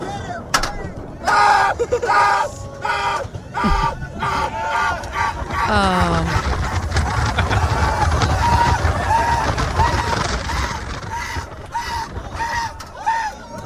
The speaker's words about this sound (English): about this man who did not realize he was terrified of roller coasters till he got on one and started screaming from the second that it began rolling off?